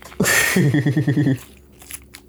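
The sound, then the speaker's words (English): Loud crunchy chewing of Reese's Puffs cereal in vanilla oat milk, a quick rhythmic run of about eight munches lasting roughly a second, then fading into a quiet background. “Reese's Puffs with vanilla oat milk. Probably the littest combo ever. And I've got my cinnamon toast crunch.”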